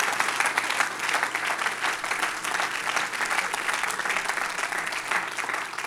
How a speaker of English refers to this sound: Everybody clap your hands as loud as you can right now.